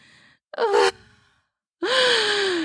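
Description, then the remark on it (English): Two sharp, breathy gasps separated by a short pause, the second longer and fading out slowly, fairly loud with a faint voiced edge, as a woman gasps, trying to slow her breathing down. “She gasped, trying to slow her breathing down.”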